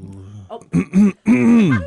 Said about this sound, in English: Cough.